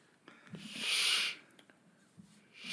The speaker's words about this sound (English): We're taking a look around. And you hear something heavy sliding along the floor.